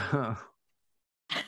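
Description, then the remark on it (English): A voice imitates a creature breathing in the dark: a low, voiced, rasping exhale, a short pause, then a breathy, hissing intake of air. “Y'all, something breathing in here.”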